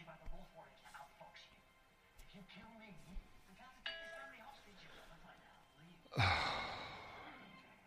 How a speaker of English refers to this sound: That's a notification off the Facebook page. Let me have a look at that.